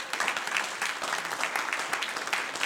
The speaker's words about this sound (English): Praise the Lord. Somebody clap your hands unto Jesus.